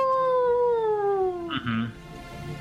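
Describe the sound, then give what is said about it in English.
A person imitates a wolf howl: one long, sustained tonal wail that slowly slides downward in pitch, fairly loud, ending in a brief rough break before fading out. “It's more of like a howl, like a wolf howl, kind of like a ow!”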